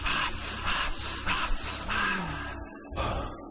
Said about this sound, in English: His throat burned. The world around him swirled, and he gasped, and gasped, and gasped, and gasped.